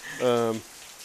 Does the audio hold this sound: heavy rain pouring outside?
yes